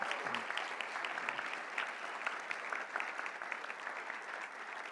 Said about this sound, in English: And so, yeah, we can clap for that